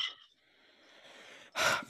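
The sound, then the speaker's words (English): A drawn-in breath builds for over a second, then a single sharp, loud sneeze bursts out, followed by a brief rustle. No one speaks. “Bless you.”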